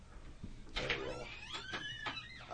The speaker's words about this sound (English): Why don't you just open that door there? Just open it.